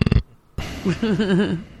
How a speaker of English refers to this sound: God bless you. Was that? That was a wine burp.